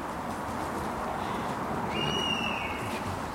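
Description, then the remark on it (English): A single drawn-out, slightly falling mewing call of a young buzzard rings out at a distance over a steady rushing woodland background, lasting about a second. “Yeah, there's another bird calling. Maybe a young buzzard.”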